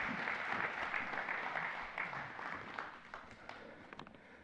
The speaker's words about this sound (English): Thank you, guys. Really appreciate it. Can we just applaud them and thank them for coming up? Thank you.